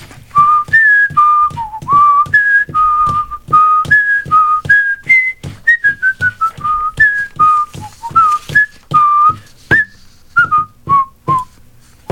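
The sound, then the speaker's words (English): A person whistles a bouncy melody of a song alone for about twelve seconds, the clear tones hopping between pitches in a quick, rhythmic tune, loud, over faint percussive beats. “I whistled that stupid song.”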